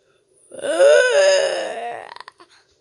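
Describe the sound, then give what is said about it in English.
A person imitates a dragon's roar with one long, strained, wailing growl lasting about a second and a half, trailing off into a few breathy, rasping puffs. “It doesn't sound like a rumble. Not like rumble, rumble. More like roar.”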